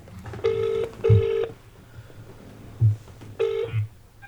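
A phone call ringing out to a phone in Waterford: a steady electronic ring tone in paired bursts, two quick rings, a pause, then another ring starting, heard down the line with faint low thumps underneath.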